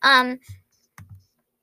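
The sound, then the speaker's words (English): A brief voiced sound, then three soft, uneven taps on a computer keyboard, each a short click with a dull thump, spaced apart in otherwise quiet surroundings, as someone types to look something up online. “If you hear me typing, I'm just looking up tortoiseshell cat.”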